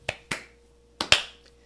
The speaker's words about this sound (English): And after they crashed, someone really did do the slow clap.